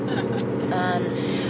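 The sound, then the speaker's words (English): Steady, dense low rumble of road and engine noise from inside a moving car, constant throughout, with faint muffled voice-like tones passing briefly over it. “And seriously, we have not stopped talking since we got in this car.”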